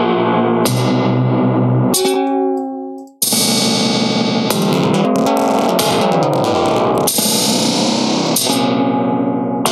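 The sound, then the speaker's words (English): Loud, distorted synth tones pushed through a synth effects module that chokes the sound before it enters the reverb or delay, with short bursts that chop off and leave echoing, decaying tails in a dubby delay style. No voices, just dense processed sound throughout. “some of them kind of like choke the sound before it enters the reverb or the delay, so you get that kind of dubby echo type thing.”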